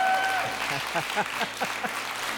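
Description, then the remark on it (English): A wedding audience applauds right after the couple's vows, a dense wash of many hands clapping at an even loudness, with scattered voices calling out beneath it. “And give yourselves a round of applause, because that's a beautiful moment.”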